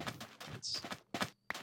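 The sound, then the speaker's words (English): A handful of clip-clopping horse hooves in a video game as the player rides a horse, uneven, with a short hissy burst partway through and brief pauses between steps. “Oh, I need to get off the horse.”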